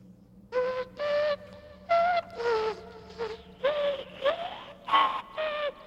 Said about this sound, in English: starts this interesting, dissonant, technological whistle of a poor rendition of the Ballad of Grendane starts to play